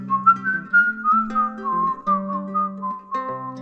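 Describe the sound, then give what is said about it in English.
A high-pitched tin whistle plays a lilting melody of sustained and quickly shifting notes, clear, over a steady lower accompaniment with no voices. “nothing like the sound of a tin whistle. That high-pitched sound gives the eardrum a tickle.”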